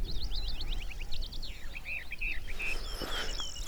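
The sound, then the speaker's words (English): A western Orphean warbler sings a rapid run of bright, warbling phrases, the notes tumbling in quick bursts over a low outdoor rumble, heard on the 1st of April. “Either it's an orphan warbler. Yeah, that's a western orphan warbler.”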